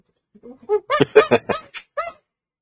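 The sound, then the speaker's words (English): A person imitates monkey calls as the original Donkey Kong voice, a quick run of about ten hooting, shrieking vocal bursts, fairly loud, with no other sounds around them. “The original Donkey Kong voice. It's just a monkey.”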